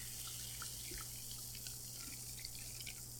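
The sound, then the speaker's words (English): Sparkling sake being poured into a coupe glass, with a soft, steady fizz and tiny scattered crackling pops of bubbles, fairly quiet, with no voices. “And now I'm going to pour into my glass. I have a coupe-style glass.”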